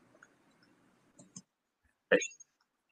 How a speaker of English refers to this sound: All right. We got cut off there.